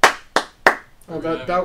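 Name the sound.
hand clapping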